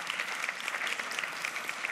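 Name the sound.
round of applause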